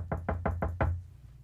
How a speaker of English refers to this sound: all of a sudden, you had a knock on the door.